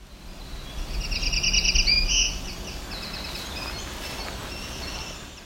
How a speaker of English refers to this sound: This was a black-throated green warbler along with a winter wren.